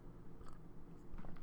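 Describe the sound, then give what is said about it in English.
Quiet sipping of coffee: a couple of soft slurps and small mouth noises over a low, steady background, with no talking. “Another sip of coffee.”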